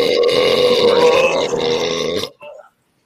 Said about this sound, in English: I got just a couple of dribbles, but like I said, I was talking about the burp on the small one. It's a little misaligned.